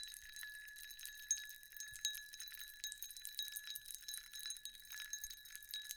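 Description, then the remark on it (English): A cocktail glass clinks and rattles steadily for several seconds while a cocktail is being drunk, with quick bright ticks over a faint sustained ringing tone. The sound is quiet and high-pitched, with no voices. “This is the first time that you're going to get to hear one of our cocktails that we're drinking.”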